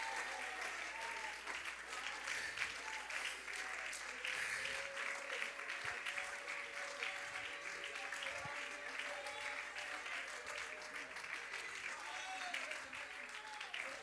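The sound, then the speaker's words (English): A church audience claps steadily and continuously in praise of God, dense overlapping hand claps with some faint voices mixed in, sustained at an even loudness throughout. “When my children come in, I want to see, I want them to know I'm clapping my hands.”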